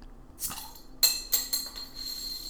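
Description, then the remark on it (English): Glasses clink together in a toast, a few bright ringing taps, with a soft shuffle before the first clear chime and quick follow-up clinks after it. “Cheers. Cheers. Cheers to you. Cheers to 28.”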